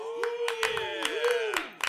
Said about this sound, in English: Hear that? Those are real claps. That is real fucking claps. Most of that's my nutsack hitting my butt cheeks.